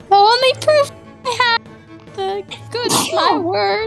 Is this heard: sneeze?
yes